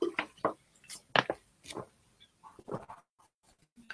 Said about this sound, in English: let me just get a sip of water here.